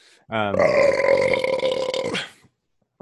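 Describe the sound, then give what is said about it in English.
A single loud, drawn-out burp lasting about two seconds, rough and resonant with a low rumbling tone, followed by brief silence. “Yeah, that's for everybody on YouTube that comments on I burp too much.”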